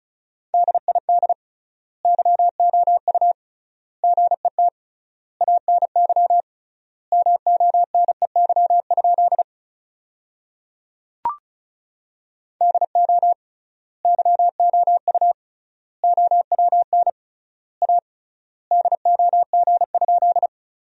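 Rapid Morse code beeps sent at 35 words per minute with triple word spacing, spelling sentences made from the top 400 words, in a steady mid-pitched tone: fast bursts of dots and dashes grouped into words with wide gaps between them, broken once by a brief click.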